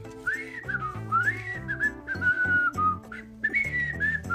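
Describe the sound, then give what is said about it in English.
A long, unbroken whistle by Patrick from SpongeBob holds a clear, bright tone for several seconds, sliding and wavering in pitch, with steady low instrumental tones underneath and no talking. “"Listen to how long I can whistle."”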